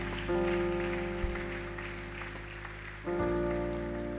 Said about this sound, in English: Why don't you put your hands together for them?